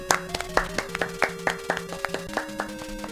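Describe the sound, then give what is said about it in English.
Steady, rhythmic hand clapping by two hosts giving a standing ovation after a long track, about a dozen sharp claps in quick succession, with a simple electronic tune playing underneath; no one speaks. “I think I need to stand up and applaud. I think this deserves a standing ovation.”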